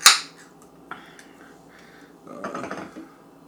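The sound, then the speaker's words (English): A sharp crack and hiss as the tab of a can of Southern Cross beer, a New England style beer canned 8/1/22, pops open, followed by a few seconds of quiet, then a burst of gurgling, fizzing liquid as the beer is poured into a glass. “Let's go ahead and get it open, get it into a glass.”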